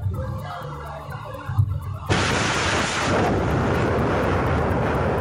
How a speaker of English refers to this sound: The fire triggered multiple explosions in the southeastern town of Sitakunda, one of which was captured by someone filming nearby.